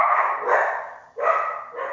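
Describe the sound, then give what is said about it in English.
A dog barks agitatedly in a rapid run of four muffled barks from behind a closed office door. Fairly loud, with no talking over it. “Dog is pissed off.”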